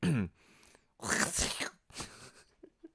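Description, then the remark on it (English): A loud, exaggerated sneeze, a drawn-out breathy burst followed by a shorter second blast, with brief vocal sounds before and small noises trailing after. “You've sneezed like Tom Cruise on Graham Norton.”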